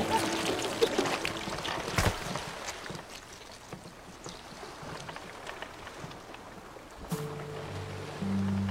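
Water sloshes and splashes around a sinking boat, a steady churning wash broken by a couple of sharp splashes, with a low droning hum rising near the end.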